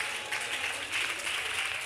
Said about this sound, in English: Again, people that are watching, notice how the claps are very sparse.